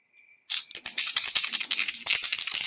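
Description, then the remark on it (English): Dice rattle rapidly in a cup or hand before a roll that comes up 5: a dense clatter of tiny clicks running continuously for a couple of seconds after a brief faint tone at the start. “Yeah, I rolled 5.”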